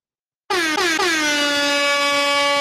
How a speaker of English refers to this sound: There's my motherfucking air horn.